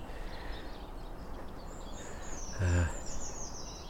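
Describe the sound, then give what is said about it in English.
Faint, high-pitched twittering and wheezy chatter of siskins runs through the background on a spring-like February day, with a brief louder, lower burst of sound partway through. “General background chatter of siskins.”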